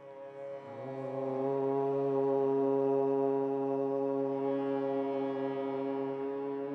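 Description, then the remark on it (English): A low, steady hummed note rich in overtones, the single note for chanting the mantra Om, holds for about six seconds after a brief lower start, staying loud and even before easing slightly at the end. No one speaks. “We're going to chant on one note, which will be, let's hum this for a sec.”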